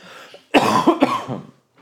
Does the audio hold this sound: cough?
yes